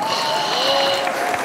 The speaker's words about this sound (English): Shall we get into our first award of the show? Yes. Yes, I hear the crowd roar.